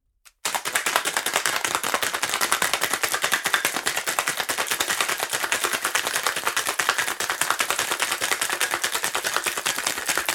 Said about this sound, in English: Put all of this in your cocktail shaker, put the lid on it, give it a good shake.